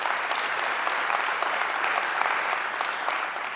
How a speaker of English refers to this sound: And I attribute the tremendously improved financial situation to a very sharp and determined board of directors. So let's give them a round of applause too.